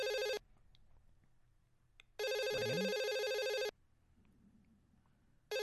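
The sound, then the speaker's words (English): A phone line rings on an outgoing call to Dixie Carter, long steady ring tones of about a second and a half separated by pauses of quiet line hiss, heard clearly with no one talking. “Oh, that phone was ringing for so long.”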